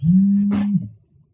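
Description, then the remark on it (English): A phone vibrates loudly in one sustained low, droning buzz lasting under a second, with a brief rattling hiss partway through before it cuts off into quiet. “The vibrator's his phone is mad loud.”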